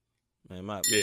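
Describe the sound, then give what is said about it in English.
A short voiced tone gives way to a bright, ringing notification ding, loud, with the chime sustaining to the end of the brief clip. “And hit that notification bell, too.”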